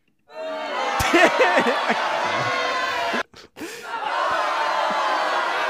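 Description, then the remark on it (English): A crowd erupts in loud cheering and whooping, with clapping mixed underneath; the noise cuts out briefly for a moment, then swells back up and carries on steadily. “There's your there's your cue for your clapping.”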